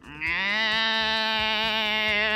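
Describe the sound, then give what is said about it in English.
A voice imitates a turtle's mating call: one loud, drawn-out, wavering moan held for about two seconds, bleating and goat-like, with no talking over it. “He like did the rounds like a few years ago and the turtle sounds that they make is like.”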